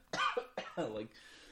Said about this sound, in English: And this is actually the first time being sick that I can recall in quite a while, where I am just coughing like a lot.